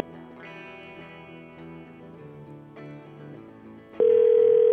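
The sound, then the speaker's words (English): A telephone ringing tone on a line, calling a number inside Alaska, cuts in abruptly near the end, loud and steady, after a few seconds of murky, tonal background sound. No one speaks. “It's ringing. It might work.”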